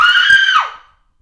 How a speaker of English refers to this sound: Just gotta let it out. Scream at the top of a ravine.